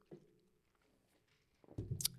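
A sip of drink, quiet at first, then a wet, squishy gulp near the end with a short sharp smack. No one speaks.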